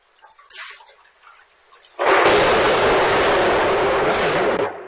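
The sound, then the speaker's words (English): After about two seconds of soft rain-like hiss, a sudden violent thunderclap from a lightning strike bursts in and becomes a loud, sustained crackling roar that rumbles on without fading until the end, echoing down through a valley; recorded on a security camera. “And then we had a lightning strike come out of nowhere.”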